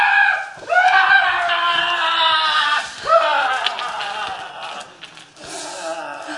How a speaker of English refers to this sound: All of a sudden, behind them, he heard the scream of a man so blood-curdling it was horrific.